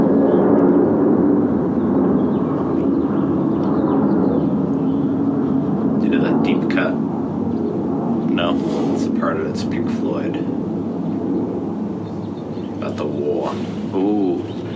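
A steady, low rumbling roar of an airplane flying overhead fills the whole clip, holding even loudness while a few short, high bird chirps break through midway and near the end.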